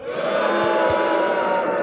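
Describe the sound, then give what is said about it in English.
A concert crowd cheers in a loud, steady roar of many voices and shouts blending into one continuous wash of sound, holding at the same level throughout without a break. “The crowd is loving this.”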